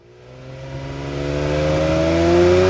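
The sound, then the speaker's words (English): A squad of white rovers comes roaring through bushes, engines revving steadily upward, a deep rumbling growl rising in pitch and growing louder over a few seconds, with a broad whooshing wash layered on top. “A squad of white rovers came roaring through the bushes.”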